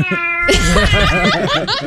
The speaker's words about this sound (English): Have you ever heard felines going at it? My goodness, that tomcat is really into it.